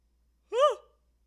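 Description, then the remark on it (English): A single short, voiced yawn, its pitch rising and then falling off into a breathy trail, with near silence around it. “The yawns are good. I yawn when I'm releasing energy.”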